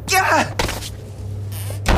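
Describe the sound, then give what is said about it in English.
After a brief strained vocal cry, a bedroom door slams shut with a heavy thud, followed by a couple of sharper knocks and clicks as it is locked from the outside, over a low steady hum. “Your door's locked from the outside.”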